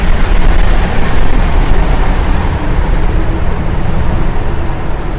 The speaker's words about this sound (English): All right, we're here. Port Authority Bus Terminal, New York City.